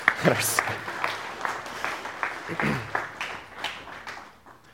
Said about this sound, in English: Thanks, ladies. Well, let's thank them by clapping our hands. It's what we do.